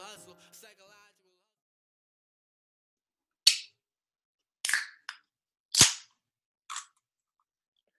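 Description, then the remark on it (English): A cold can of beer being cracked open: a brief faint voice first, then a short pause and a string of five sharp, hissing pops and cracks, the loudest near the middle. “That was me cracking a cold one for the long weekend.”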